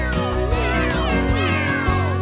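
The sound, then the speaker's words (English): A few drawn-out cat meows rise and fall in pitch over a steady musical backing, fairly loud, with no one talking. “Cats.”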